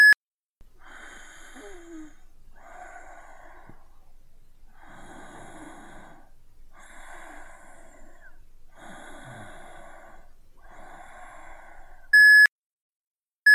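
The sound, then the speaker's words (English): A series of raspy, breathy gasps and wheezes plays for several seconds, then a single sharp, loud electronic voicemail beep tone sounds, followed by sudden silence. “I can't come to the phone right now, but please leave your name and number after the tone, and I'll get back to you as soon as possible.”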